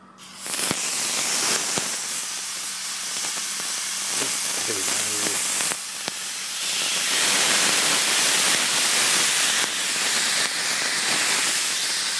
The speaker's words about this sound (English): The pan, the griddle that has been on the gas for some time now, the griddle is smoking. And now I'm going to put the beef on, the sirloin on for Thai beef salad. Here we go.